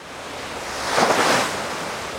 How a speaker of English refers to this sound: But as we sail south from Chile and through open ocean, 20-foot swells toss it around like it's a little dinghy.